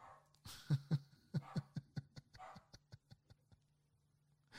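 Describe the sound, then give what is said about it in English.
A dog being looked after for the weekend barks in a quick, steady run of about a dozen sharp yaps that gradually fade, with no one talking over them. “I'm dog sitting this weekend, and I can hear him in the background.”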